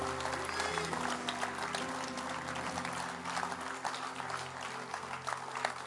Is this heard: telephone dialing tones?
no